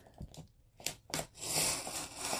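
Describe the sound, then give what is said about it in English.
A blade drags slowly through a few layers of a stack of paper pages in short scratchy strokes, a few crisp rasps followed by a longer, steady hissing slice. Moderately loud, with no talking. “Just going slow, going through a few layers.”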